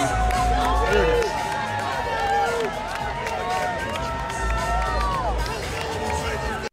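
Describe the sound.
A basketball arena crowd cheering on the Blue Devils to a win over Kansas in their opening game, a dense, loud roar of many voices with rising and falling yells layered over the constant din.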